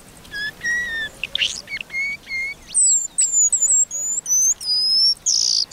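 A paradise whydah calls in a quick series of thin, high whistled chirps and short sliding notes, repeated with brief gaps, clear over a faint background hiss.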